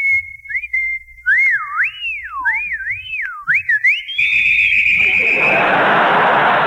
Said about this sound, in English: there's a blonde over there. I'm going to whistle at her.